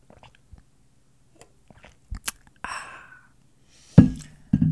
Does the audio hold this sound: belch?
no